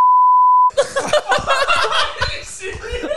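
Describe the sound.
A steady electronic censor beep sounds for just under a second, then cuts straight into lively chuckling and laughter mixed with talking voices.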